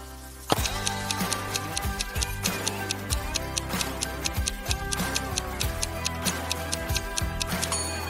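A countdown clock ticks in a steady, brisk rhythm of sharp, bright clicks, layered over a continuous musical backing with a low bass pulse. No one speaks.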